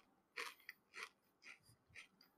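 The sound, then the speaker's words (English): Crisp crunching of someone chewing a crunchy peanut butter candy bar with no chocolate, four or five bites in a steady rhythm about every half second, with no talking. “All right, here we go. It's crunchy.”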